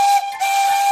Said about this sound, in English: Diesel engines and steam engines are a little different from each other in the way they work. They sound different too. Steam engines have whistles that sound like this.